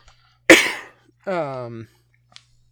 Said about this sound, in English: I did peek it out a little bit there with that cough, but that's fine. The cough's fine.